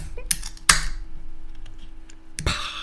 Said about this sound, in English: All right, here we go. This one's out of a can, so here's what a can sounds like. Can't get my fingernails underneath it.